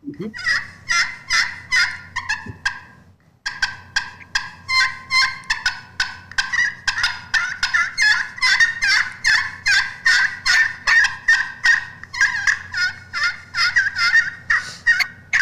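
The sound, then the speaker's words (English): Loud turkey clucks from a friction call imitating a turkey: sharp, raspy notes in a quick, steady series, with one brief pause early on, over a low background hum. “So with the clucks, you're keeping that angle.”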